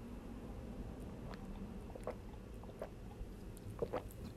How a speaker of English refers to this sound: Let me take a sip of water because I'm thirsty.